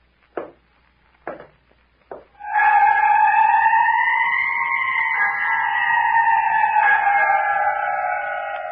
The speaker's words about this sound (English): I heard footsteps on the porch. Listen.